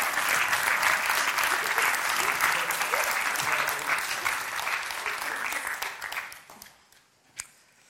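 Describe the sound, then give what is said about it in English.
A church audience applauds a group of men as they return to their seats, with dense, sustained clapping that holds steady for about six seconds, then thins out and fades, leaving a few scattered final claps. “Please, can you give these men another round of applause and turn to their seats?”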